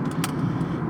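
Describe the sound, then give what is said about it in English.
A motorcycle right next to the speaker rumbles steadily and loudly for under a second, a deep low drone with a brief hissy burst near the start and no voices. “There's a motorcycle next to me right now, so...”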